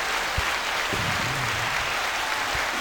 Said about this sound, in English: There's a round of applause for you for being a great friend.